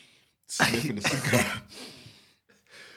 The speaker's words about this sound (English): Sniffing the cigar. This from Brazil. This is a good one.